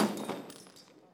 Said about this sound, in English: And then what did he do? He knocked over the table.